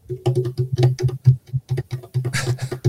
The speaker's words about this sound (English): This is how you play djembes when people are asleep in the house.